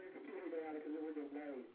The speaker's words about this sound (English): That's cool, isn't it? The echo. Oh, that's scary.